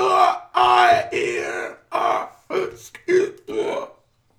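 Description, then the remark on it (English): A crystalline creature with crystal lungs lets out about eight rough, wordless groans and squeaky croaks in quick, uneven bursts, gravelly and burp-like, some rising higher in pitch, fairly loud with brief gaps between. “And the groans and squeaks of a crystalline being with crystal lungs.”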